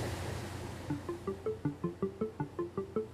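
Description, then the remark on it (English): One of four large pumped-storage hydroelectric units at Northfield Mountain running in pump mode, pumping water from the Connecticut River to the upper reservoir, with a deep, steady rumble under a fast, regular pulsing hum that repeats several times a second. No one speaks. “here is one of the four units at Northfield in pump mode. So right now we are pumping water from the Connecticut River to the upper reservoir.”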